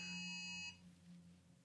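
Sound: phone alert tone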